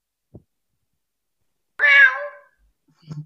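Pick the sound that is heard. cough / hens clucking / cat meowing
cat meowing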